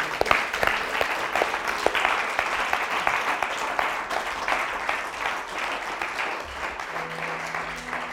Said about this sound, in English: These guys who work, they deserve a round of applause, I think.